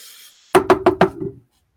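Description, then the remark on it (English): Four quick, sharp knocks on a wooden door in an even rhythm, fairly loud, preceded by a soft hiss and followed by silence. “I got to raise my hand to knock.”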